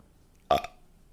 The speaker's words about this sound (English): That's by me. That's ad-libbed. The burp.